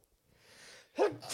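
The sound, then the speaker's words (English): A single sneeze: a rising breathy inhale, then a sharp explosive burst followed by a quick hissing exhale. “Bless you.”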